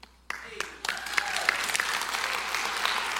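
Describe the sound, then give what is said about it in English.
A large crowd in a church breaks into applause after a brief quiet moment, scattered claps quickly building into steady, dense clapping that continues loudly to the end. “And I don't want to applaud the dudes because it's all in an effort to serve the women, but I was overcame with the fact that our church is in a place where men could serve women.”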